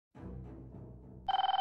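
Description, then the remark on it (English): A low, rumbling murmur gives way to a short, loud burst of a trilling telephone bell, which stops abruptly after just half a ring, less than half a second. “heard the phone ring just half a ring before it cut off.”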